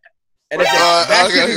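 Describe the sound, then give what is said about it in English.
After a brief silence, a voice lets out one loud, drawn-out, retching burp sound lasting about a second, imitating a gag burp. “There's a gag burp.”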